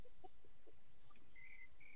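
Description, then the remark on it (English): Faint, high-pitched cricket chirps, thin trills that come in short bursts toward the end over a quiet background, with a few soft lower chirps earlier on. “Oh, there it is. There's the cricket.”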